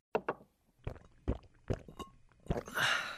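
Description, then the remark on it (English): A few wet gulps and swallows in an irregular rhythm as someone downs pills with a glass of water, ending in a brief breathy rush. “Swallows his pills when he's instructed to.”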